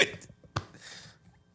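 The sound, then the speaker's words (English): Two sharp, abrupt hiccups about half a second apart, each a short voiced catch, followed by a soft breathy exhale; no talking in between. “I got hiccups.”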